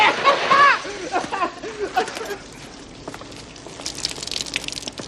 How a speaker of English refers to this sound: Can we get that damn water turned off?